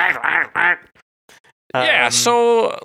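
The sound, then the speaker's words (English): A person imitates a duck with their voice to mimic a discordant piano chord: three quick, nasal quacks in a row, a short pause, then a longer, buzzy quacking tone that sounds like several pitches at once, loud. “I can only make one sound at a time with my voice, but I can make it sound like a duck, and that's a discordant chord.”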